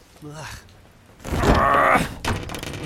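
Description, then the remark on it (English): A swollen, peeling wooden door is forced with a man's shoulder and groans open onto a dilapidated hallway with a loud, drawn-out creak lasting under a second, ending in a dull thunk, preceded by a brief muffled vocal sound. “Shunting it with his shoulder, he forces the swollen door, which groans open onto a dilapidated hallway.”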